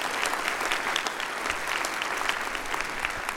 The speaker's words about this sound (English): Give Kevin a big round of applause.